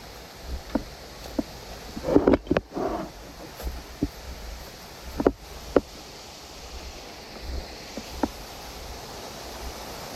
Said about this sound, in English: I'm gonna go here, just don't touch the bamboo. You can hear the bamboo smacking together.